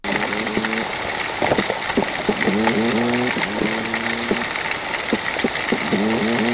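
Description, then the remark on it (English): Underwater toadfish calls recorded in Bocas del Toro, Panama: about four low, buzzy, harmonic hoots, each under a second, repeating at uneven intervals over steady hiss, with sharp scattered clicks in between. “This second sound clip is of toadfish in Bocas del Toro.”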